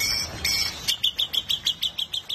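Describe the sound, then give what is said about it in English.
Javan pied starling song: a run of about ten sharp, evenly spaced high chirps following a brief burst of buzzy, whistled notes, fairly clear. “Take the Javan Pied Starling.”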